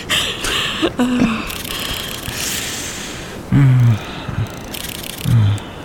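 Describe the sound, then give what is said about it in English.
Several short, crisp camera shutter clicks arrive in small clusters, separated by pauses, with a few low, brief tonal sounds and a soft background hiss in between. “You should turn your shutter sound back off.”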